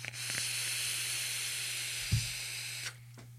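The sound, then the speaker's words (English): A steady airy hiss runs for nearly three seconds as someone vapes on an Odin with a Blotto Max on top, air drawn through the hot coil, with faint crackles inside and a brief low thump near the end before it cuts off. “The airflow's good. The crackle is good.”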